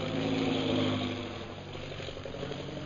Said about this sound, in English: That is one of our new bombing planes. Now arriving for establishing our Purple Triangle Kingdom.